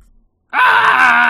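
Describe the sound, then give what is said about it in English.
After a brief pause, a person lets out a sudden, loud scream that holds steady and high-pitched without breaking, still going when the sound cuts off. “I kind of just want to scream.”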